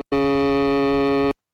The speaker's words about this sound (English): And anyway, this is what it sounds like together, and apparently this is the one, all the tones combined, this is the one that summons Mandela Barnes.